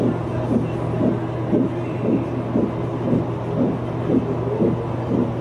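A rapid, steady whooshing pulse of a fetal heartbeat on an ultrasound monitor, about two beats per second, over a constant low electronic hum.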